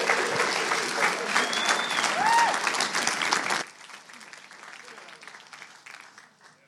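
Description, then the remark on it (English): A crowd at Arena Church claps for a speaker being welcomed up, in a dense, steady burst of applause for a few seconds, then it abruptly drops to a much quieter, thinning patter of scattered claps that fades out. “Come on, let's give her a round of applause.”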